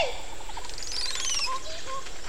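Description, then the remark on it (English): A Montezuma oropendola calls in deep jungle in Belize: a clear burst of liquid, gurgling notes and a long rising whistled glide, with no voices, over a steady hiss of forest ambience. “So many times in deep jungle, you only get to hear the bird and not see it, so you can imagine my thoughts when I heard this amazing vocalization.”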